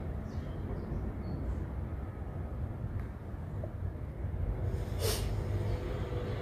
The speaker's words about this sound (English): When you're ready, switch. And exhale. Slow and controlled. And inhale. Let that belly expand and switch when you're ready. And exhale. All through the nose.